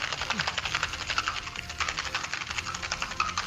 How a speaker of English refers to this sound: And you're going to fill up that shaker with ice. And you're going to give it a shake.